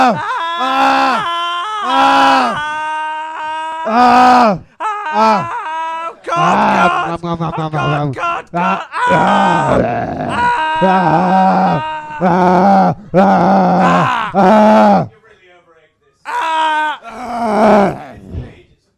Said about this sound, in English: Ah, so that's what a man looks like being savaged to death by a three-headed dog. It's an amazing sight. I pity those who have never seen it.